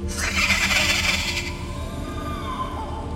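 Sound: creature screaming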